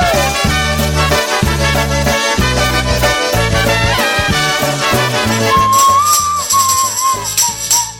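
A bouncy polka band plays with a steady oom-pah bass beat while a slide whistle swoops up and down over the top, most clearly in the second half.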